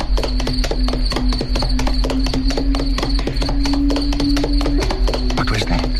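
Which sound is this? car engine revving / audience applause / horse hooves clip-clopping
horse hooves clip-clopping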